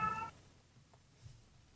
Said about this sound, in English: Me, as somebody that wanted to be an educator, to hear that cat really kills me. You know, I'm going to go lock her up in the bedroom.